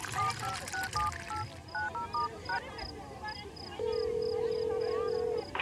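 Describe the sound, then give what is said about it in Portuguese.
A telephone being dialed to call the caller's mother: a quick run of short two-tone keypad beeps, then a steady, sustained line tone, over a faint background murmur. “Tenho que ligar para minha mãe.”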